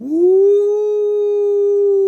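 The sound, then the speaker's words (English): A voice imitates a ghostly howl: one long, loud "ooo" that swoops up briefly, then holds a steady, eerie pitch for about two seconds, alone. “Ooh, the ghost howled.”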